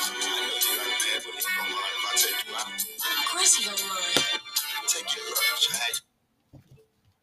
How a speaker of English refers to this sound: Now, why my phone ring while I'm recording?